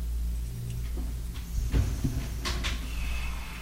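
A chair shifts and scrapes over a low background rumble, with a soft thump and a couple of short creaking scrapes as someone backs away in it during a quiz game. No one speaks.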